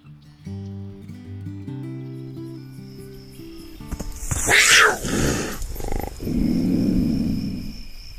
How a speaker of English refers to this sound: Wildlife has it pretty tough these days. Take the elusive mountain lion, aka cougar, aka panther, aka puma.